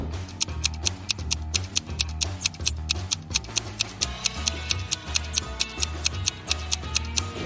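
A clock ticks in a steady, brisk rhythm of sharp, bright clicks, layered over a throbbing low bassline and soft music, with no one talking.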